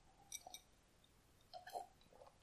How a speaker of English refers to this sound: I'm going to have a little sip because it's a drinking break.